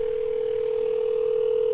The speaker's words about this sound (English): Oh, come on, pick up the phone.